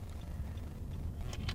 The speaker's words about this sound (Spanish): Espero que me acompañes desde este coche que surca las carreteras portuguesas en un día gris, para charlar, para escucharnos, para conectar.